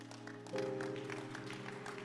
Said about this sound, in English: I've told you that the clapping is free. You don't pay. Just in case you think there's a bill.